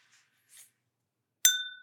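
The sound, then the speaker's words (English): Glasses clink together once in a sharp toast, the bright ring hanging and slowly fading; a couple of faint soft rustles come just before. “I'd also like to toast our listeners and maybe a toast slash a prayer that the Holy Spirit would continue guiding each and every one of us to the truth and beauty of Christianity”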